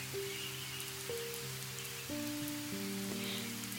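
A steady hiss of rain pattering on a surface, fairly quiet and continuous, with soft sustained musical notes changing every second or so over it. No one speaks.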